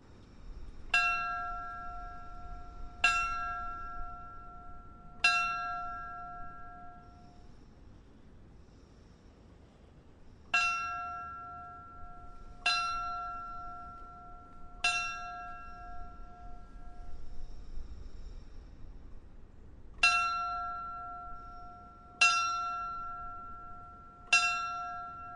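A memorial bell rung for fallen firefighters at a Peoria firefighters' remembrance, marking the end of their duties, rings in three sets of three evenly spaced strikes, each a clear, bright tone that rings out and fades, with a pause between sets and no talking.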